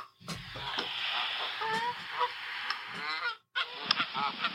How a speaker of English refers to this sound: No, hold on. I found goose honk. Yeah, there you go. That's what you're looking for. This is geese honking.